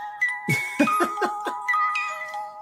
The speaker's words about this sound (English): Y'all hear the bells.